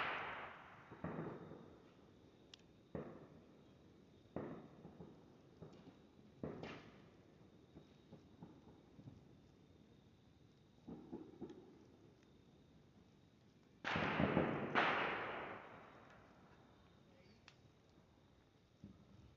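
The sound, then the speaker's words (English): Fireworks boom outside in an irregular series of sharp blasts, each trailing off in a rumbling echo, with a louder back-to-back pair near the end. “I'm pretty sure anybody from the Vietnam War that was sitting around here hearing all of these fireworks go off would be a problem for them.”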